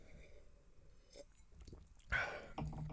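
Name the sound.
sipping whiskey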